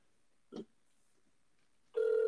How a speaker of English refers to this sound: We're calling him now. It's ringing. I'm sorry, guys. All right, awkward silence for a second until he fucking answers. Answer the phone.